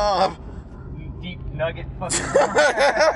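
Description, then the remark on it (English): A person vocally imitates a moped engine: a brief buzzy rev, a short lull, then a louder run of warbling, sputtering revs that rise and fall repeatedly. “Deep nugget fucking worst moped sound ever.”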